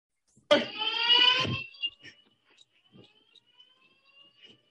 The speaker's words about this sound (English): you do not want any alarm going off. You need to be able to hear where the shots are coming from. The police need to hear where the shots are coming from and where they're at. Obviously, if the alarm's going off, you can't hear nothing.